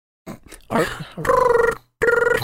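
A telephone rings loudly in two trilling bursts separated by a short pause, after a brief muffled voice and grunting noises at the start.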